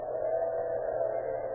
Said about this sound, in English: In a small office located in the Sun Mercantile Company at 616 South 7th Avenue, two men converse in low tones, listen to the high whine of an electric drill.